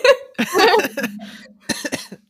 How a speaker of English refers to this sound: Oh, he coughed. I am sick, yes.